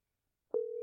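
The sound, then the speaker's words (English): After a moment of silence, a steady telephone ringback tone begins as a phone call is placed and waits to be answered, a clear electronic hum that holds unbroken to the end with no one talking. “Hope he answers. Come on, Corey. Answer your damn phone”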